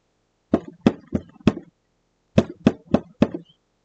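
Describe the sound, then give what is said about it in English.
Two sets of four sharp knocks rap on a basement door, loud, with a short pause between the groups and no voices. “Knock On The Door”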